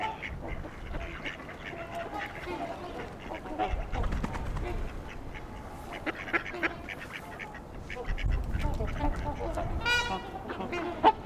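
mallard ducks quacking

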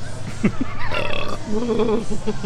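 belch

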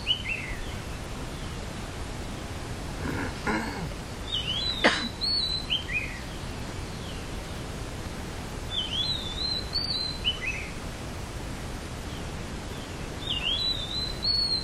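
birds singing outdoors

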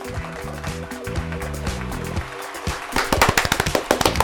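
hands clapping

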